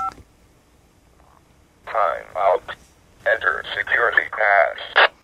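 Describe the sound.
A brief two-note DTMF touch-tone beep is sent to a microcontroller project at the start, then after a short pause a voice answers in clipped, somewhat tinny phrases asking for authentication, like an automated system replying over a radio or phone line.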